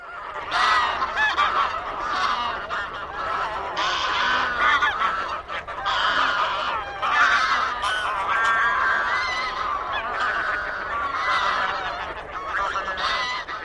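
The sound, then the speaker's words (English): Loud, continuous honking of a flock of greylag geese (Anser anser), many harsh nasal calls overlapping in a dense chorus, with no pauses across the whole stretch. “It's the gray-lag goose, Anser anser. This species is the ancestor of our domestic goose.”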